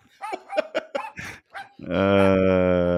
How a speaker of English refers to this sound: Are we gonna use the dog? The dog.